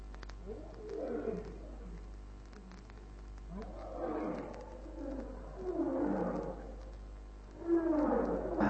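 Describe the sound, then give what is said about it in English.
Lions roar in a series of deep, rumbling calls that overlap and answer one another, growing louder over several seconds, with the last roar the strongest. No one speaks. “One lion roar, that make others roar.”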